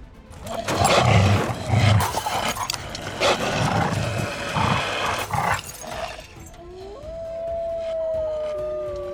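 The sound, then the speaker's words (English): Loud, chaotic snarling and roaring for about six seconds as Aurora slashes K-Rod with her claws and the two fight like vicious dogs, with harsh bursts and growls; then a long rising howl takes over as the scuffle fades. “Aurora slashes K-Rod with her claws, and then they begin to fight like vicious dogs.”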